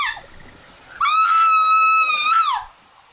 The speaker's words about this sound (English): Is that all one scream? It was two back to back.